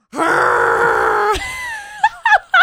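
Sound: voice imitating Chewbacca roar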